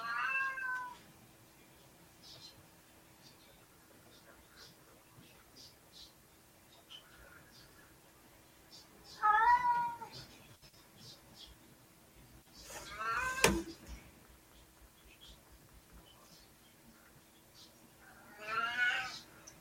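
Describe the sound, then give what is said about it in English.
A cat whines and meows in a few separate drawn-out cries, with a brief clattering knock partway through and no one talking. “Well, yes, you have to listen to my cat whine now.”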